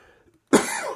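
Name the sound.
cough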